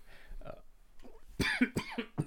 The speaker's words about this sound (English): we got a little coffee cough over there. Yeah. Excuse me.